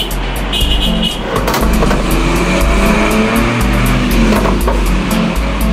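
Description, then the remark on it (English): A minibus taxi zooms past, its engine roaring loud and steady throughout, with a short double horn toot near the start rising briefly above the rumble of traffic. “with a bop bop of his hooter and a puff of exhaust fumes, a harassed-looking taxi driver Joe zoomed past in his minibus”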